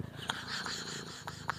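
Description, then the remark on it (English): A female cat sleeping on the speaker's shoulder purrs steadily right against the microphone, a low continuous rumble with soft rhythmic pulses and a few brief breathy snorts, loud and very close, with no talking. “But, oh God, she's purring into the fucking mic.”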